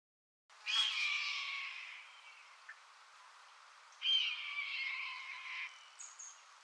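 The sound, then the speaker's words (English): A red-tailed hawk gives two long, hoarse, raspy screams, each trailing downward, loud, with a brief pause between them and no other sounds. “Red tail hawk noise. I'm going to put that in right here.”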